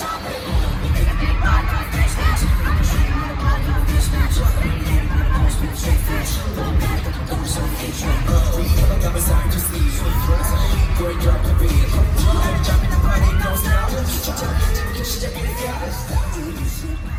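A concert crowd cheers and shouts without letup, a dense, loud wash of many voices with scattered yells rising above a heavy low rumble.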